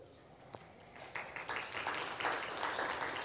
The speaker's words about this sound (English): I know y'all are clapping for her, and I get that. I understand.